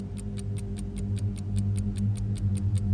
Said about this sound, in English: And at 8:45, an innocent alarm clock that has been hidden in the north wing would finally make its final tick before ringing and sending electrons racing down wires, snake through the basement.